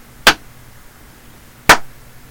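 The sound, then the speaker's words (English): Two sharp hand claps ring out alone, roughly a second and a half apart; the second has a slightly longer, fuller tail, with only faint background hiss between them. “Two claps. First one wasn't like a loud one.”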